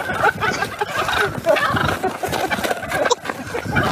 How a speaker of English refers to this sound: These toms having none of it, gobbling their displeasure at anyone bold enough to approach.